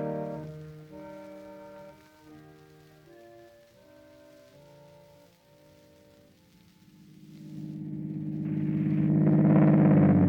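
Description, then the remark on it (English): A steady, tonal hum shifts pitch in steps, then a motor surges into a loud, rising roar over the final seconds, like a Daimler car engine revving up as the car is driven off. “I got up and went over to the car and drove off.”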